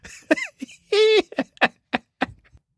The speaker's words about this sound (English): This past summer, Trump flag waver spouted a lot of theories about Hillary Clinton's health. We see the coughing fits.